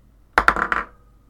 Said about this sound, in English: Okay, so roll me some d10s, boys. I rolled an 8. Excellent.